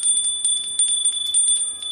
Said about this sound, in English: Let me ring the bell.